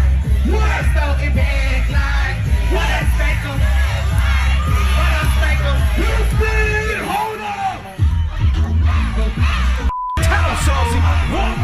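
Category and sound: crowd, concert crowd cheering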